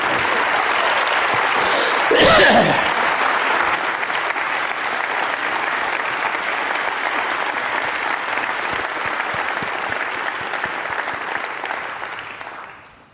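Sustained applause from an audience, a dense steady wash of clapping with a brief louder swell early on, holding for about twelve seconds before tapering off at the end.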